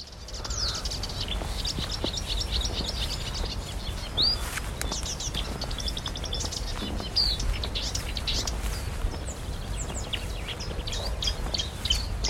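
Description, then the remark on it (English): A marsh warbler sings a rapid, varied stream of chattering, mimicking phrases and sharp whistles, continuous, over a steady low background rumble with no talking. “I think we should hear the marsh warbler.”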